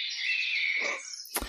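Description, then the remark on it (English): Birds chirp in a steady, high-pitched trill that runs for about a second without any talking, then a short broad burst of noise cuts in at the end. “The birds know in the background.”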